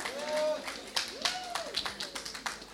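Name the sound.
audience clapping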